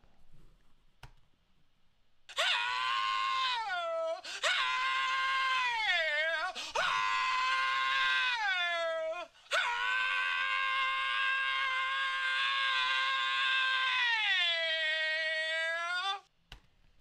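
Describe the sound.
A loud, growling sung purr from a singer's voice, given as a thank-you to a viewer for a super sticker, rising and falling in pitch across several sliding phrases before one long held moan that trails off at the end.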